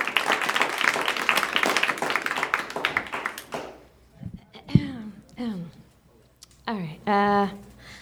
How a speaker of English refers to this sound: Big round of applause for your second round comics.